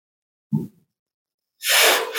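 A quick sharp intake of breath, a brief pause, then one loud, explosive sneeze with a hissing spray that trails off. No talking.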